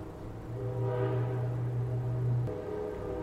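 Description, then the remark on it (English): A train rumbles past, with a steady low horn blast sustained for about two seconds over the continuous rolling noise, no voices. “Well, I meant to stop that for the train, but I didn't hit stop.”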